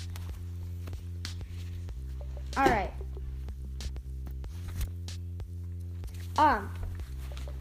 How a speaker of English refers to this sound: So you'll hear a bunch of footsteps coming from her gameplay.